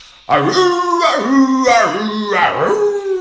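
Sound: dog howling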